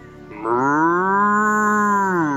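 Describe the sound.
A single long, loud cow moo, a steady low drawn-out bellow lasting about two seconds before tapering off, with no talking.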